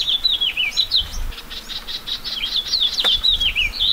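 A house finch sings a lively, jumbled warble of bright rising and falling notes, continuous, over a soft steady patter of light April rain in the Anza Borrego Desert in southeast California.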